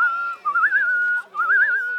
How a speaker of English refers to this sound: Sometimes after a really good play, Parrot glances over and finds the other parrot meeting her eye. Together, they whistle.